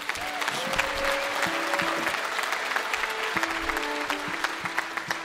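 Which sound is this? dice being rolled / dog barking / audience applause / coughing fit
audience applause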